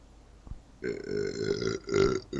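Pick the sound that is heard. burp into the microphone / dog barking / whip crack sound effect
burp into the microphone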